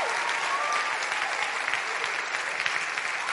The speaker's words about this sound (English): I need you to clap like you have never clapped before for redemptive revelation.